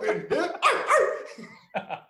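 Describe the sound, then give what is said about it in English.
A man's voice mimics a dog barking, a quick run of sharp, high-pitched yapping barks followed by a brief pause and two more short yips, loud. “Hey, put some bass in your bark, dog. You over here barking like a goddamn Yorkie.”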